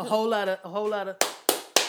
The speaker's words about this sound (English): The look alive claps.